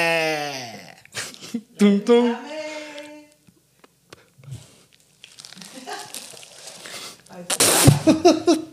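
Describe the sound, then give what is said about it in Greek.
A person mimics a goat's bleat with a few wavering, quavering vocal cries, followed by rustling and crinkling noises and a burst of louder commotion near the end. “Τα χόρτα είναι για τις κατσίκες. Μπε.”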